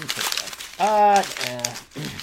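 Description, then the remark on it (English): Paper letters crinkle and crumple in short, rustling bursts as they are crumpled up to be thrown away, with a person making drawn-out voiced sounds in between. “I automatically crumple them up and throw them away when sometimes maybe they should go into the box of mementos.”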